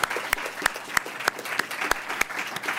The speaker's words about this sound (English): So let's give him a round of applause for a great commentary.